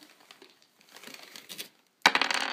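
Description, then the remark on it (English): Dice rattle and clatter softly for a couple of seconds, then a sudden louder burst of rolling clicks and knocks as they tumble across a hard surface. The dice are rolled for damage during a tabletop role-playing game. No voices. “Oh, no, that's the wrong dice.”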